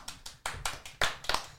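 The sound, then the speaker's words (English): A thin, scattered round of applause: a few people clapping unevenly, the sharp claps sparse and out of sync, fading quickly rather than building into a full ovation. “It's the worst round of applause ever.”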